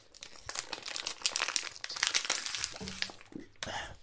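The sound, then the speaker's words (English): A plastic water bottle crinkles and crackles in rapid bursts as someone chugs from it, trying to finish the bottle of water quickly in a race, with sharp crunchy snaps throughout and a brief low vocal sound near the end. “I could probably finish this water before you finish that water.”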